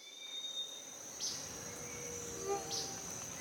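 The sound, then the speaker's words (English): A dense rainforest ambience in Panama of steady, high-pitched insect chirping and trilling, with a couple of brief sharper calls rising above the continuous buzz. No one speaks. “Today, we're going to a rainforest in Panama.”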